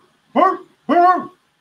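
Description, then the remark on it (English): A dog barks twice, loud, with a short pause between the two full, ringing barks and nothing else around them. “But instead of using hey, we take some dog.”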